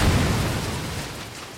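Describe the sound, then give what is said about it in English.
An unfinished building implodes after Baylor flips a switch outside, crashing to the ground in a loud sustained rumble of low booming and crumbling debris that slowly fades over a second and a half, with no voices. “Outside, Baylor flips a switch, and the building implodes, crashing to the ground.”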